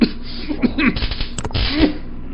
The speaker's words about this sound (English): That's a pretty bad cough you got there